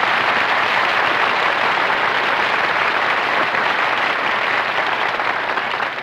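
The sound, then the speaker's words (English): Steady, sustained applause from waiters in a restaurant, a dense wash of clapping that stays loud and even for about six seconds before easing slightly at the end. “This is a restaurant. Who's applauding you? The waiters.”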